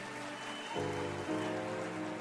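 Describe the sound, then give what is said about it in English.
An audience claps steadily for a couple celebrating their 10 years of marriage, a dense, even wash of applause, while sustained musical tones underneath shift pitch twice. “Why don't you clap your hands for them?”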